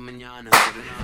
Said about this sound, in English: See, if you guys watched last week, you know that the clap is the slate. So that way, when I'm editing this bitch, the vocals will sync up with the video.